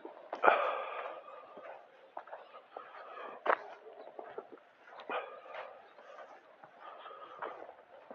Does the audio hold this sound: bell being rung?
no